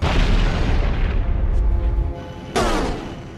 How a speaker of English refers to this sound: Weapons so loud they can be heard in the vacuum of space. Nice when the targeting computers actually work.